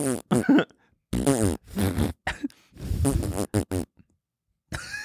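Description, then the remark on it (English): A person imitates fart noises with their voice, blowing a series of buzzy, sputtering bursts of varying length separated by brief pauses, fairly loud. “Yeah, try to make the noise. I'm trying to nail the tone.”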